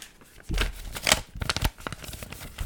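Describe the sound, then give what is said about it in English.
Paper being crinkled as an ASMR sound for a couple of seconds: dense, crackly rustles in uneven bursts, loudest in the middle, with no one speaking. “I'm gonna crinkle some paper.”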